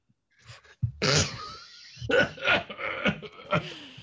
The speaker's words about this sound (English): I'm sorry, I appear to have a bit of a cough.